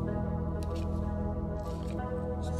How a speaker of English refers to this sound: I've got a big old hot cup of coffee here. Just got it prepared. I'm going to take a sip really quick.